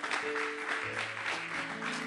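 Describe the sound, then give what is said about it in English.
A crowd claps steadily to celebrate Jesus for the whole stretch, a dense, even patter of many hands, with sustained low musical tones, like a keyboard or organ, held underneath. “Clap here and celebrate Jesus. Clap here and celebrate.”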